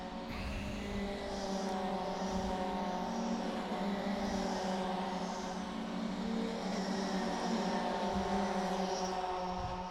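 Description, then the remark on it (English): GT3 racing cars roar steadily and loudly around a racing circuit for the whole stretch, a dense, droning engine note with layered harmonics and slight swells as cars pass, no voices. “Oh, more cars.”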